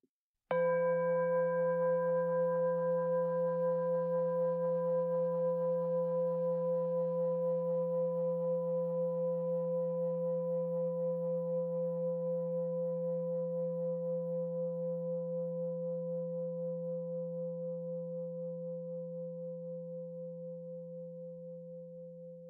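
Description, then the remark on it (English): A meditation bell is struck once to start a walking meditation practice, then rings on alone with a warm, steady hum of overlapping tones that fades very slowly over about twenty seconds. “The meditation will start after the meditation bell rings.”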